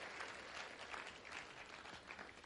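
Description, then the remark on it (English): A church audience claps for the fathers as they take their seats, a dense, even wash of many hands with no pauses or cheering, holding at a fairly quiet level throughout. “Can we clap for the fathers one more time as they take their seats?”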